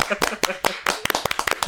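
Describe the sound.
A short burst of uneven clapping from a few people, sharp and fairly loud, with voices chattering underneath before the claps speed up toward the end.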